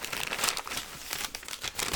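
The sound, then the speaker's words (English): Steady paper crinkling and rustling as a gift is unwrapped, continuing in uneven bursts for a couple of seconds with no voices. “It's just a roll of paper.”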